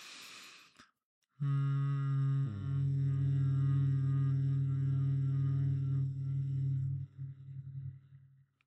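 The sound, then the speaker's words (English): A breathy inhale, a brief pause, then a long steady hummed exhale: a low, resonant voiced drone held for about five seconds before trailing off into breath. “What is a hummed exhale? A hummed exhale. Yeah. So just simply like a breathe in.”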